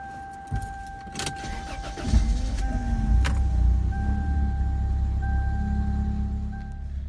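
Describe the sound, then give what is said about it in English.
Keys jingle briefly, then a car engine cranks and catches around two seconds in, settling into a steady low idle rumble alongside a faint dashboard chime tone. “So my car started now, yay!”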